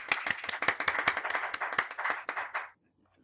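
A small group claps together for a few seconds, a dense patter of sharp, overlapping hand claps that holds steady and then stops abruptly, leaving silence.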